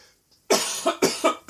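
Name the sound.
coughing fit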